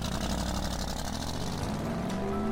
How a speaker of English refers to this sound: I turned the key. "Please start." The car started, and I drove away.